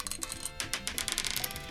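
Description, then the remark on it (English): Dice clatter and tumble in a quick, irregular burst of sharp little clicks and knocks, bright and fairly quiet, settling in under two seconds with no one speaking. The roll decides evens or odds for a money loan, and it lands on a five. “Get rolling, dice, mate.”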